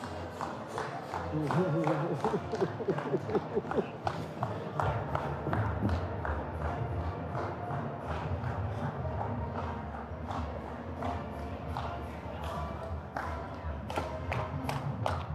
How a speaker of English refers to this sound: See, it just shows you there ain't very many Purdue fans. There's only like three of you clapping.